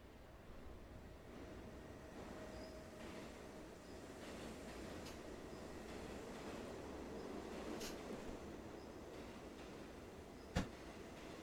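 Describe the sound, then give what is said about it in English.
A steady low rumble of a subway train rolling past in a subway station, with faint metallic squeals and a sharp clank near the end, with no talking. “You emerge into the familiar sight of the subway.”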